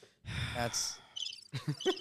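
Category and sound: sound effect, cricket chirping sound effect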